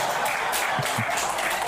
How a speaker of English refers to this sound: Don't clap for that.